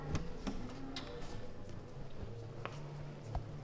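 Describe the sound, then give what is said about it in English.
About six sharp camera shutter clicks at irregular intervals, photos being snapped one after another inside an old, dark church with stained glass windows, over a steady low hum, with no one talking. “No, just some photo snapping, that's all I hear.”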